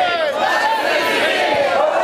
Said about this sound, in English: Now watch closely because I might mix it up, okay? Jesus come in Jerusalem and the crowds yelled, Hosanna! Now watch for it.